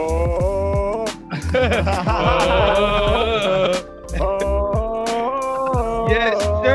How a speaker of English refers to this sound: They start humming the Matthew McConaughey song from Wolf of Wall Street.